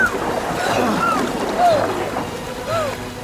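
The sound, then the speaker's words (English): Rushing river water roars steadily around a canoe for the whole stretch, a dense wash of noise, with a few faint shouted voices rising briefly over it. “Keep your legs tucked up! Come on! Don't let the river grab you!”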